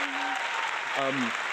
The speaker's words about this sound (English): They're the winners for the February Show Us Your Pipe. Round of applause. Let's put it in there.